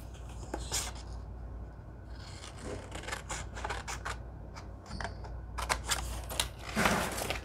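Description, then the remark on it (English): Scissors snip through stiff cardstock, cutting out small file folder cards, in a series of short, crisp cuts with papery rustling between them, fairly quiet and steady, with no talking. “And we'll cut our little file folder cards out.”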